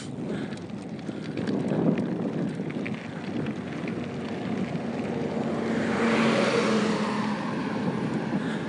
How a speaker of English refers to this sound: It turned into a gravel road. One sec, big car coming.